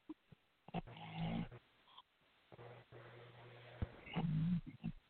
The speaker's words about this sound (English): I think he's still snoring.